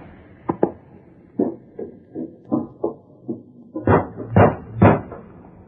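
A series of dull knocks by Tonto on the wooden door of a ranch house, spaced irregularly at first and then three heavier, louder raps near the end, with no voices.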